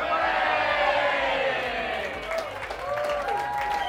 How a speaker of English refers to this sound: Right, you're booing. Oh. So yeah, it was all going quite well into that last one when the boos began.